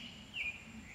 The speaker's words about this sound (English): Grateful for everything, and being in the woods with the birds.